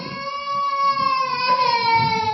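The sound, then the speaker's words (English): A small child, a grandchild, cries in one long, unbroken wail, high-pitched and strongly tonal, holding steady and loud throughout with a slight wavering in pitch. “Whose grandchildren are making all this noise?”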